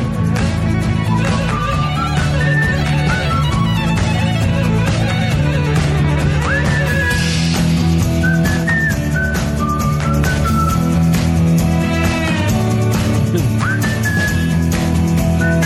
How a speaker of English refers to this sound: That is nice. It's a lot of whistling. A lot of whistling.